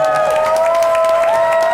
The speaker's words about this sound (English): Nothing is happening. They're just clapping that loudly. There was no encouragement at all.